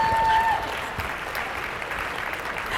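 An audience at a debate claps in a steady round of applause for both debaters after the winner is announced, a dense crackle of many hands that holds at an even level for a few seconds, with a brief thin whistle-like tone at the start.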